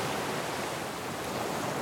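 Sea waves of the Bay of Bengal wash in a steady, unbroken roar of surf, a broad hissing rush that stays even in loudness throughout, with no voices.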